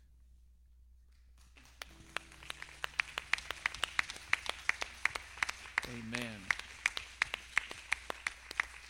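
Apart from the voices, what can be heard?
audience applause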